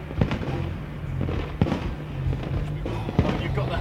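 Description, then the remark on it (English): Fireworks popping outdoors: three sharp, muffled bangs spaced roughly evenly apart, over a steady, noisy background murmur. “Yeah, but it's really nice, and there's like fireworks going off right now.”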